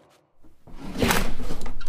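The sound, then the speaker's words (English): Someone rummages through a drawer looking for scissors to cut duct tape. A quiet rustle builds into a steady, loud jumble of clattering and scraping objects that carries on to the end, with a sharp knock partway through. “Just let me find some scissors to cut the duct tape.”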